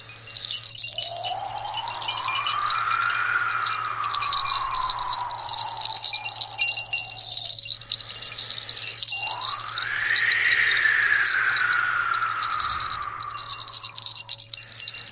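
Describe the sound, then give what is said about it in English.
A steady high tinkling of a string of three different small bells rings throughout, shimmering without pause, while two long sliding tones swell upward and then glide back down beneath it. “There's three different bell sounds, because there's three different bells in this string.”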